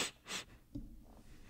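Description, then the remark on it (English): Two quick, airy sniffles in a row, short hissy intakes of breath through the nose, followed by a faint low rustle and quiet breathing. “Sniffle.”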